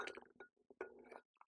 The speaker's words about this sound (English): I'm sipping some water.